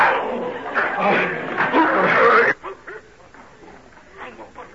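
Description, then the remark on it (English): A dog snarls and barks harshly in a loud, frantic burst for a couple of seconds as it attacks a stranger amid a scuffle, then the noise drops away to quieter, scattered sounds. “What sort of a dog do you keep that he'll attack a perfect stranger in such a way?”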